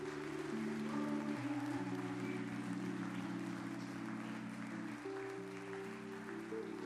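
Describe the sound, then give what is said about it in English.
A church audience claps their hands as praise to Jesus during worship in a steady, sustained wash of applause, mixed with held keyboard or organ chords that shift pitch underneath. The sound stays loud and even throughout, with no talking. “Come on and give Jesus a hand clap of praise in this house.”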